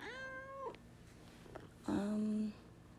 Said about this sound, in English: Kitty cat.